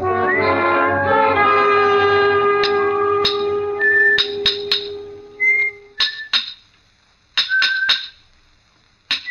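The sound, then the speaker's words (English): Short, bright whistled notes come in brief bursts in a monumental mason's yard, mixed with sharp metallic clinks of hammer blows and steel striking stone, after a long ringing tone fades at the start. No one speaks. “From the yard itself came a cheery whistle, a noise of hammer blows, and the cold sound of steel meeting stone.”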